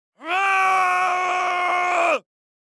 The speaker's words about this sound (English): As the group wondered what was going on, they heard a blood-curdling scream from the man that had been at the counter.